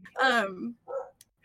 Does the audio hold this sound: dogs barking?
yes